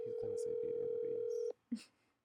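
A phone line rings out over a speakerphone, a steady electronic tone sounding for about a second and a half under overlapping voices, followed by a short beep.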